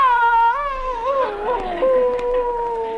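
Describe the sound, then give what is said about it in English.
A man's voice imitates a dog's howl, one long, loud wavering wail that rises, wobbles and settles into a steady drawn-out tone, unaccompanied. “Ah, Victor, you're a gay dog, and this is your night to howl.”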